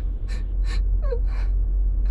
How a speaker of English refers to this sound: I'm choking. Can't get any air. Spasms in my stomach.